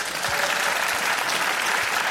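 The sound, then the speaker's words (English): A crowd claps steadily, a dense wash of many hands applauding at an even, fairly loud level throughout, with no voices standing out, as a comedy audience votes by applause on a question. “So how many people here think that they kept their same dicks by applause?”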